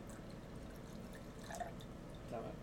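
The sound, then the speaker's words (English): Liquid is poured into a glass, trickling and dripping softly, with a few brighter splashing glugs near the end, quiet, with no voices. “Let me just go ahead and pour that.”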